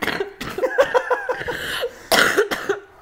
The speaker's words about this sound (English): You can cough it out if you have to. Sorry. No, you're good. Get it out.